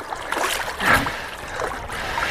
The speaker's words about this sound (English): Going down, walking down. Entering the water. Oh my lord. And swimming, swimming. Incredibly cold. Sharp tingling all over me.